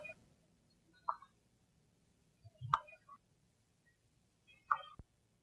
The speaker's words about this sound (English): Then, in lieu of actual harvester ant sounds, we have the next best thing, the clicking sounds of ant pupa from the genus Myrmica scabrinatus.